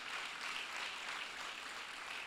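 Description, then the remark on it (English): An audience claps together in a steady, dense wash of applause that holds for a couple of seconds without letting up, with no voices rising above it. “Come on, clap tonight if you want the power of the Holy Spirit.”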